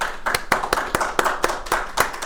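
A round of applause for a guest from the Pod Station: hands clapping in a quick, steady rhythm, about ten sharp, crisp claps at a moderate level, with no voices over them.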